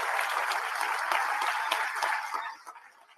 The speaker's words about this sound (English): So give them a big round of applause for that.